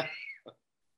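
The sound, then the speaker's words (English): A raspy, drawn-out cough from one person, trailing off into a short second throat-clearing burst, then quiet. “Hopefully you can edit out that train wreck of coughing.”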